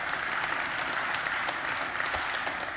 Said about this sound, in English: Yes, give him a clap offering if you know that.